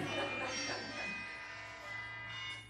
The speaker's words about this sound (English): You know, this dizziness is really getting to me. I'm hearing bells now.